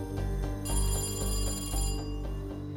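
A telephone rings with a bright, trilling bell burst over a steady low tonal hum as a call comes in to a fundraising committee, then the ringing fades back. Moderately loud, with no one speaking.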